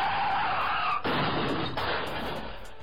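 car tires skidding

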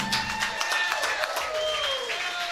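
crowd cheering and applauding

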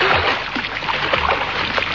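water splashing from swimming

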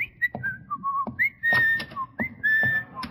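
person whistling a tune

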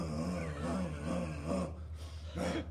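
dog growling

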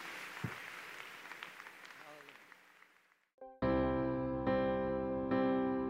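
audience hand clapping

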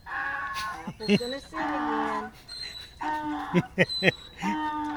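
donkey braying

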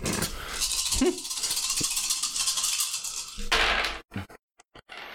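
dice being rolled

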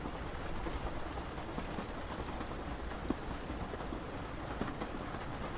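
rain falling

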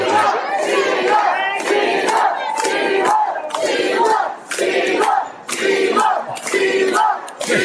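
crowd yelling

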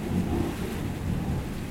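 thunderstorm with rain

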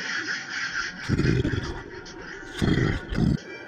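monster roar

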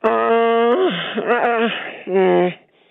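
goat bleating

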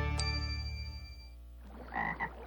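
frog croaking

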